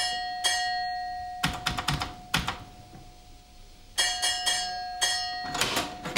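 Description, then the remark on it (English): A railway signal box bell is tapped out in a code to the signalman at Arley, telling him the train has arrived safely: quick groups of sharp, ringing strikes separated by short pauses, each leaving a faint metallic hum. No one speaks. “I then tap out the code to the signalman at Arley to tell him the train has arrived here safely.”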